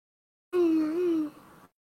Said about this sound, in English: excuse my yawn.